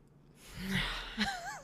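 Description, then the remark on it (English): A short, breathy cat meow with a wavering pitch at the end, fairly soft, heard on its own without any talking. “The cat agrees.”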